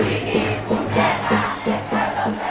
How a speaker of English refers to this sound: the people are to be respected, the crowd shouted.